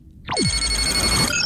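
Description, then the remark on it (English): A sci-fi incoming hail signal: a quick falling electronic sweep, then a loud, steady, bright ringing tone with a low hum underneath for about a second, no voices. “Captain, we are being hailed.”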